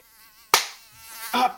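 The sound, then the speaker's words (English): A housefly buzzes in a steady, wavering drone, broken by two sharp slapping hits about a second apart, with no voices. “That fucking fly.”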